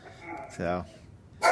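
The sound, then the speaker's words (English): A dog named Tucker lets out one short, loud bark, followed a moment later by a brief burst of rustling noise, with faint background murmur around it. “So we didn't have much food, and then we got to my dog. Here's your dog.”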